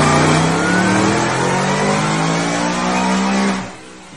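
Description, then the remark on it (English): A lowered, gray Ford F-150 Super Crew short-bed pickup with an Odin supercharger and twin 69 throttle body revs loudly, holding a throaty, harmonic roar with slight pitch shifts for several seconds before it drops off abruptly near the end. No one speaks. “It has an Odin supercharger. It has a twin 69 throttle body.”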